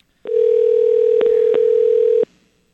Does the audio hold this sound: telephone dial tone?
yes